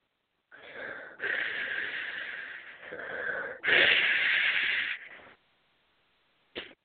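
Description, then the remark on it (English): A person does a Darth Vader impression, imitating a mechanical respirator's heavy breathing: two loud, raspy inhale-exhale cycles with a hissing rasp, followed by a pause and a short breathy puff. “Would you like to hear my Darth Vader impression?”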